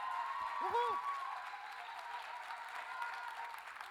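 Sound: audience applause and cheering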